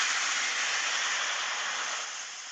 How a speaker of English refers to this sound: Now I hear a beach. What did you say you hear? I hear a beach. Okay. I'll give you that one. That was water waves.